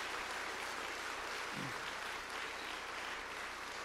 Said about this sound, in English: Now, one more time, can we give Jesus a great big hand of applause? Yes. Thank you, Jesus.